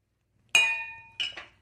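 A wine glass clinks sharply and rings with a clear, sustained tone that slowly fades, followed by two quicker, shorter clinks close together, with no talking.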